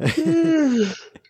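A close, drawn-out yawn: a breathy intake followed by a long voiced tone that slowly sinks in pitch, then trails off into a couple of soft breaths.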